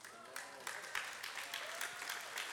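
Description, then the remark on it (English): Light, scattered golf claps from a small audience, a polite smattering of applause with claps arriving irregularly at a moderate level over a faint murmur. “Just hold your golf claps for a moment.”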